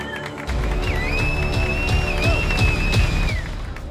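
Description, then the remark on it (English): An audience bursts into applause after a brief pause, a dense, steady wash of clapping with a high whistle ringing over it, loud and sustained for several seconds. “Cutting my chin in a rush, shaving before the show is worth it with this applause.”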